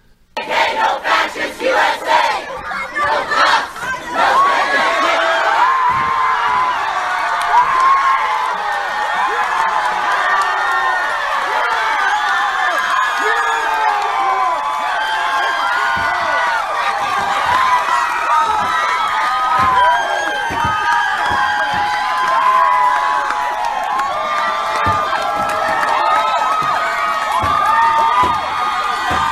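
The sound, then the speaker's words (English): A large crowd of Taliban yells and cheers continuously as they destroy a 1,500-year-old statue of Buddha, shouting Allahu Akbar in an Afghan accent, dense overlapping shouts and screams filling the whole stretch at a steady, loud level, with a few sharper bursts near the start. “They are just charming, aren't they? Just screaming like hyenas, those little animals.”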